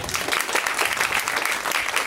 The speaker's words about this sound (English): Well, clap if you think that I'm attractive.